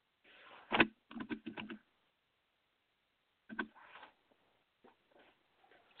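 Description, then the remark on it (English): Keys clatter on a computer keyboard in uneven bursts of quick taps, with pauses between the flurries. The typing is muffled and thin, and nobody speaks. “There's a lot of outside noises that I'm hearing. I'm typing, all kind of stuff.”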